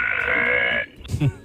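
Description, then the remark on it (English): A kid burps on command, letting out a long, loud, buzzy burp lasting nearly a second with a croaking, raspy tone, then a brief pause and a shorter, lower gulp-like burst. “Kid says he could burp automatically.”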